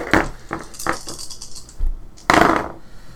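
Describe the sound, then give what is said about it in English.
Dice rolled for an athletics plus strength check in a tabletop role-playing game clatter across a hard tabletop in a quick run of small clicking bounces, then a louder rattling tumble near the end, with no voices. “Roll again. You get her success. Well, you get that as an extra dice.”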